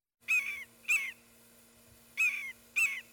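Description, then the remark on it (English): A Guam kingfisher gives four harsh, raspy calls, loud, in two pairs with a short pause between the pairs. There is no talking. “Is that a Guam Kingfisher? It is a Guam Kingfisher.”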